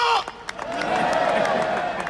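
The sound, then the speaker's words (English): A large outdoor parade crowd on a Sunday afternoon cheers and claps after a man's brief shout, the noise swelling into a steady, loud roar of voices with scattered sharp claps running throughout. “So that's what … shouted at the parade yesterday, Sunday afternoon. I think the crowd gave him a good reception from it”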